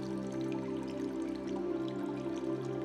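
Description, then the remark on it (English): Fresh water trickles steadily and continuously at a seaside cave, with small scattered drips over a constant low droning hum. The sound stays even throughout, with no voices. “The waves, the distant birds, the trickling fresh water, the breeze.”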